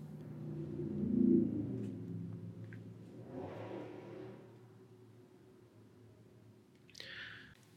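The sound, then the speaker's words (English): A car with an intensely loud engine drives past through a residential neighborhood, with a low droning growl that swells, peaks, then fades as it passes. A brief higher chirp cuts in near the end. “All right, I had to break because apparently people love to drive through my neighborhood with intensely loud engines.”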